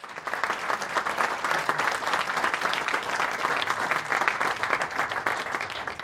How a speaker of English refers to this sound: Round of applause, please, for our panel.